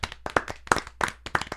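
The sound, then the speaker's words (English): A short round of clapping for a special guest: about five sharp, evenly spaced claps in a steady rhythm, moderately loud, with no one talking over it. “Right, big round of applause for the special guest”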